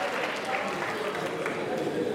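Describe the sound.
An audience applauds the actors of a just-performed scene about Moses' raised hands, a steady wash of many hands clapping at an even loudness for a couple of seconds, with a murmur of crowd voices mixed underneath.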